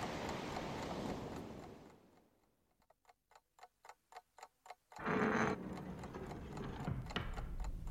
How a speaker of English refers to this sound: It's ticking. I think it must be a clock. My mistake. It's a bomb. A neat, compact little bomb that'll blow a hole the size of a whale through the bottom of this ship.